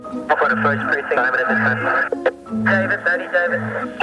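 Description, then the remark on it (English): Muffled, garbled police voices crackle over a police scanner radio, steady and unbroken for a few seconds, with static, a thin, band-limited tone and a repeating low hum beneath the chatter. “Odds are you'll hear a lot of dead air, static, and voices you can't quite understand.”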